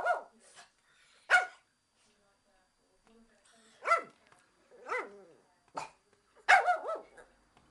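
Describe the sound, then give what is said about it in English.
A small toy-breed dog yaps in short, high-pitched bursts, about six sharp barks spaced irregularly with brief pauses between, fairly loud against a quiet background. “So I have a video here of the bark.”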